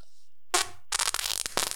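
A loud fart blasts into a microphone, a short buzzing burst followed by a longer sputtering, crackling one with a low rumbling buzz underneath, distorted and harsh. No one speaks.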